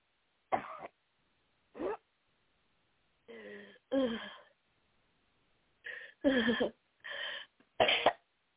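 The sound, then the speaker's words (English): During a deliverance prayer, eight or so short, harsh coughs and throat-clearing bursts follow deep breaths. They arrive in irregular clusters with brief silent gaps between them, fairly loud, with no talking. “Deep breath and cough in Jesus' name.”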